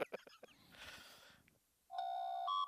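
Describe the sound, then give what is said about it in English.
A few sharp clicks and a brief rustle give way to a loud electronic two-tone door chime sound effect played from a phone, a steady held note stepping up to a higher one, with a thin, speaker-like quality. “And that's the other door.”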